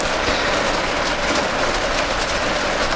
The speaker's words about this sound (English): We have our window open again, everyone, because It's dusty. Oh, you know what I was going to do right here? What? I'm just going to insert right now what it sounded like last episode. So just one second. Oh, the rain? Here we go.